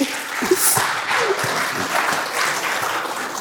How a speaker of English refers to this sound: Combined, I took an average. We're at about a 4.7 Google review rating on the stage here. So a big round of applause to you guys on that one.